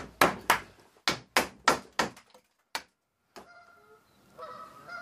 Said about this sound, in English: My arrival at this next church has set off the Canada geese, which are down on the pond below the church.